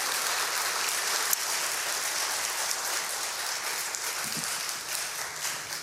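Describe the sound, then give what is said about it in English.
An audience applauds steadily to welcome new full members, many hands clapping in a dense, even wash of sound that holds at a constant level for several seconds with no voices. “Why don't we welcome them with a round of applause?”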